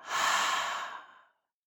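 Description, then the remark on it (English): A single deep, airy breath in and out, taken as part of a guided breathing exercise, rising quickly and fading out after about a second, with no talking around it. “And we're going to take a deep breath in and out.”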